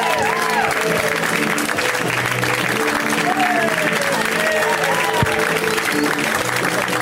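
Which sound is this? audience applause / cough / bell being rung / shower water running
audience applause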